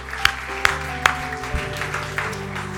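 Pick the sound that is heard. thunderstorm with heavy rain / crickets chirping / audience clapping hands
audience clapping hands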